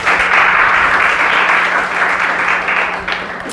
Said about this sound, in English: I just can't help but ask you all to just give yourselves another hand of applause for being here.